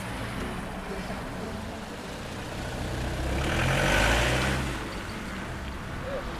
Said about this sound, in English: The students from Blackwater Community School arrive on foot and bus by car. The doors slam closed as they make their way into school, hurrying before the school bell sounds.